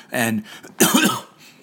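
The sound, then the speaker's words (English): Two rough, throaty coughs from a person with a cold, the second one sharper and louder, separated by a short pause with no talking around them. “You see, I wound up getting one of those colds, those sore throat, headache, runny nose, stuffy throat, coughing, all of that kind of stuff.”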